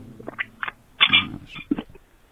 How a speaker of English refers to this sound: I pounded a Monster Energy, fuck yes, and that's not a lie. And I'm sipping it. Hold on, here. Let me get a little bit of a sip on it. Hold on, 1 second, guys.